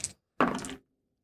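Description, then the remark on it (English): Dice are rolled in a game to fulfill a vow, two challenge dice against six progress, clattering and tumbling in two quick bursts, a brief rattle followed by a longer, busier clattering roll that stops abruptly into silence; they land on double ones. “And we're going to roll to fulfill your vow. This is going to be our 2 challenge dice versus 6 progress.”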